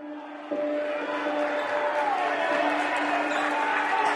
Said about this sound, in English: Squeaking shoes and whistles and fans cheering and the ball bouncing and, you know, the coaches shouting. And you can paint a picture in your head.